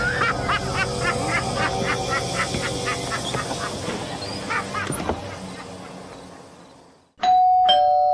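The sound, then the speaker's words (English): A loud two-tone doorbell chime rings out after several seconds of dense, rhythmic goose-like honking that fades into a brief silence. “Someone's at the door.”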